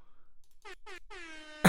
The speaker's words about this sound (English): I've always, dude, I love the air horn, man. I can't complain about that. Hopefully that played for you guys.